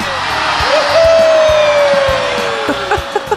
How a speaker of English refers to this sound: Why are they cheering for that? I don't know. The people there love winter, apparently.